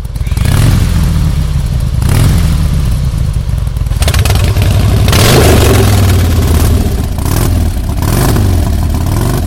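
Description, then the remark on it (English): Loud motorcycle engines of the Motorcycle Men rev and rumble, the pitch rising and falling with each throttle burst as the bikes pull away, with some clattering mechanical noise. “And we are the Motorcycle Man, and this is us leaving.”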